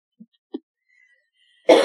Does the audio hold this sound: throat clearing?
yes